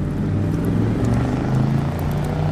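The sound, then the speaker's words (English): A car engine roars steadily, a loud continuous drone with layered low tones that shift slightly in pitch as the car drives off at breakneck speed, with no voices. “enough time to scramble back to the car and drive off at breakneck speed.”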